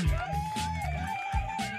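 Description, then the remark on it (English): An applause button sound effect, pressed by mistake, plays: a canned burst of crowd cheering and whooping with a sustained whistle-like tone over it and rhythmic low thumps, steady and fairly loud throughout. “I'm not gonna lie, I hit an extra applause button by mistake, but we're gonna let it rock.”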